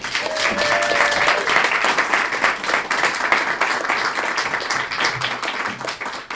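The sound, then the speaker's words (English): An audience at a storytelling event applauds steadily for several seconds as the first storytellers are invited up, a dense wash of many hands clapping at once, with a brief high whistle-like tone rising over the crowd near the start before the clapping tapers slightly. “Please give a lovely round of applause”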